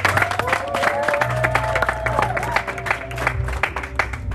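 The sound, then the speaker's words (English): An audience at a church worship service claps steadily for several seconds for a first-time visitor, a dense wash of many hands, while sustained keyboard or organ tones and a low bass hum underneath. “Clap for our sister.”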